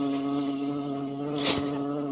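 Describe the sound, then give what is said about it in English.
A steady buzz of a wasp in a room drones throughout, a harmonic hum that swells briefly louder midway, with no talking. “Got a wasp in the room.”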